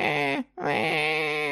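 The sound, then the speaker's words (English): A voice imitating a baby crying: two loud, sustained wailing cries with a rich, steady pitch, split by a brief breath-like pause, with no other talking. “Do you like my baby crying impression?”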